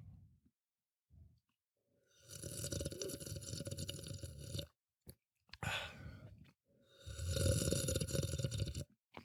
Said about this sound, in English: you're doing the bong sound with the fizzy water today. You're getting really good. You couldn't even do that before.